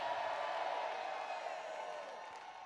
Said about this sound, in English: If you're a Christian, you'll be shouting and clapping.